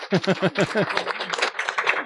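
A burst of rhythmic, laughter-like vocal pulses gives way to a dense, crackling wash of audience applause for a friend spotted in the audience, many hands clapping together at a steady, moderate level.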